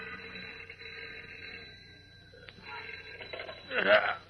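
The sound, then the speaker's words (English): An old-style telephone rings at night in the deserted Daily Planet city room, beside a night telegraph operator who reaches for it, with a steady, bright bell tone that continues for several seconds, moderately loud, with a brief louder burst of sound near the end. “A few minutes later, a sleepy night telegraph operator in the deserted Daily Planet City room yawns and reaches for the ringing telephone at his side.”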